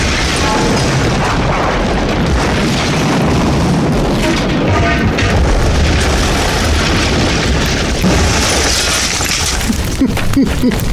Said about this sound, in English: Oh, no, no! My truck! What is that? I don't know, some fucking metal pipe. God damn it! It went right through the engine block.